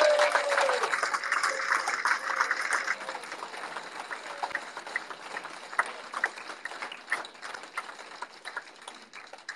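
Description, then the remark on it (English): An audience breaks into a round of applause for the players, a dense wash of clapping for the first few seconds that gradually thins out into scattered, fading individual claps. “So do you want to give the players a round of applause?”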